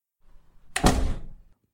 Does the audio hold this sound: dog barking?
no